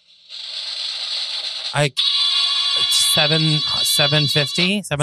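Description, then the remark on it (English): A compact sound machine plays a steady, shrill electronic tone like a ringtone or alarm, with warbling voice-like bursts rising and falling over it for about five seconds. “This is the most compact sound machine I've ever had the pleasure of viewing.”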